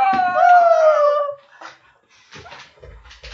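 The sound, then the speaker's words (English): A dog named Sam lets out a loud, high, drawn-out whimper that wavers and slides in pitch for over a second, followed by a few softer, brief whiny yips and snuffles. “I'm a big, scary German Shepherd.”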